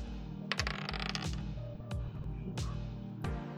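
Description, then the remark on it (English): Force dice clatter and tumble across a hard surface in several quick bursts, sharp clicks and rattles spaced about a second apart, over a steady low musical background. “All right, shall we roll our force dice?”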